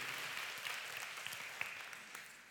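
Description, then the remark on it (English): A church audience gives the Lord one big hand clap of praise before being seated, a dense, steady wash of many hands with scattered sharper claps popping out, holding for a couple of seconds before starting to thin at the end. “And everybody said, now give the Lord one big hand clap of praise, if you will, before you're seated.”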